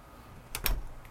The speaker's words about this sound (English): Heading out the door, little book in hand.